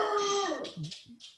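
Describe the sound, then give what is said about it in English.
A pet dog gives a single drawn-out howl that slides downward in pitch, clear, then trails off into a few short, breathy noises. “Got a dog? It's my dog.”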